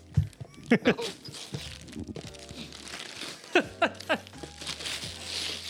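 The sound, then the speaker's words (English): Gift wrapping paper crinkles and rips in several sharp bursts as a gift is opened, with steady rustling in between and voices murmuring in the background. “Do you need the wrapping paper?”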